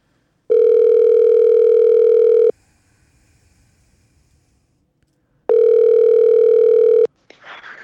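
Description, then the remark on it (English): Two long, steady buzzing rings of a telephone line as a call is placed, each about two seconds, separated by a quiet pause, loud, followed by a brief rustle as if the call connects. “Let's get Jim on the phone.”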